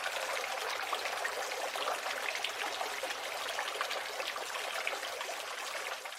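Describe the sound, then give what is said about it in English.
Water trickles and splashes steadily from a small fountain in a neighbor's backyard with trees and grass, a continuous bubbling burble with no voices, holding an even level throughout. “which faces our downstairs neighbor's backyard, so there are many trees and grass and nice things, they have a little fountain that bubbles water.”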